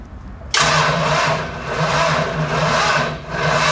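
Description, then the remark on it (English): A small-block V8 engine fires up abruptly after a brief quiet moment and roars loudly, its deep rumble swelling and easing in a couple of revs. No one speaks. “I think it's a small block V8.”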